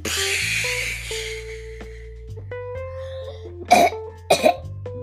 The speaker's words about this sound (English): Sorry. Wait, can robots cough? I don't know. I guess I'm the one that can.